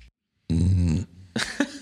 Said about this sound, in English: That was weird because that only came through my left ear. Why is that? Burps are always funny.